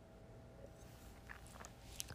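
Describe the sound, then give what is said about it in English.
A quiet sip from a drink, with soft wet mouth sounds and a small click near the end, alone with no talking. “Sis, let me take a sip for that one.”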